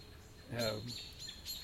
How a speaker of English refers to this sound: The owl may be down there with all of that chirping that's going on there. Maybe one of our screech owls is down there. Freaking out the local songbirds.